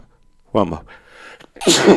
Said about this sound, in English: How are you going to keep all the sneezing? I don't care. There's only two people listening, and you all know me personally, so I apologize for the sneeze, but I don't care.